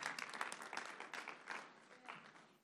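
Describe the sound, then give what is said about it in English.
A church audience breaks into steady applause at the preacher's urging during a sermon on prayer and fasting, many hands clapping in a dense, continuous patter that holds at an even level for a few seconds, with no voices standing out above it. “Clap that up right now.”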